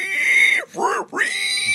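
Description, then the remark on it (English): A robot squeals like a pig as it slips and rolls down stairs with its legs flailing: a loud, shrill, harsh squeal rising and falling in three quick bursts with brief dips between them, lasting under two seconds with no talking. “And then squeals like a pig, and his legs are flailing.”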